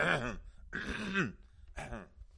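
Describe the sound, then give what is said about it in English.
Three voiced throat-clearing bursts in quick succession, fairly loud, each a short rough rasp with a falling pitch, separated by brief pauses and no speech. “Let me clear my throat.”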